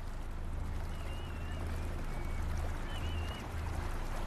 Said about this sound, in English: It's morning at the mouth of the River Tamar in the southwest of England. Conditions are cold, quiet, and still. Cutting through the fog that is hanging just above the water is a small fishing vessel